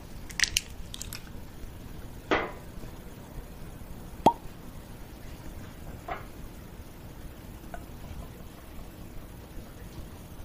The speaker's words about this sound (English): So let's go ahead and pop the cork and see how this looks in the glass.